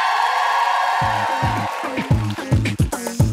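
An audience applauds to vote for a contestant, a former producer, in a steady wash of clapping, and from about a second in, loud whoops and shouted cheers burst out repeatedly over it.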